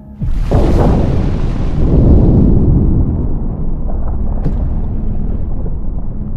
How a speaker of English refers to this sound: He felt trapped in this tiny little metal box. And that was before the ocean floor began to shake slightly.